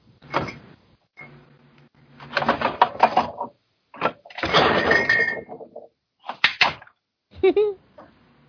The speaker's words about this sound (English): No, just the refrigerator door slipped out of my hand and was slammed against my wall.